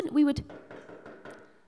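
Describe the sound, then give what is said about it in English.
A brief voiced sound, then one sharp knock on a door followed by a few softer, evenly spaced knocks, fading slightly. “We'd keep knocking till they opened up the door.”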